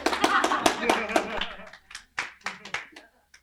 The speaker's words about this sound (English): Golf clap.